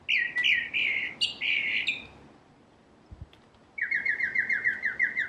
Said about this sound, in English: What did the other guy say? Red winged blackbird? Yeah.